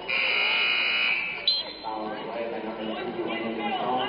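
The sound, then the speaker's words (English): A referee's whistle during a basketball game between Mount Morris and Owosso, blown for a foul in the backcourt: a loud, shrill, steady blast holds for about a second and a half, then cuts off, leaving a murmuring crowd and scattered voices in the background. “Got a whistle in the backcourt here.”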